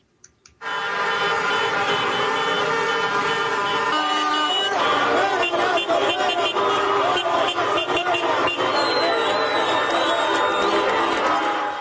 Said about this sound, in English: And thousands of protesters marched into Ecuador's capital on Monday on the eighth day of anti-government rallies. The demonstrations in Quito are led by indigenous people angry at high fuel prices and demanding social and economic reforms.